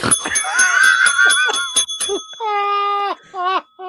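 A small bell rings loud and close, struck in a quick rattling burst of about a dozen rings, followed by two longer sustained rings that hold and fade.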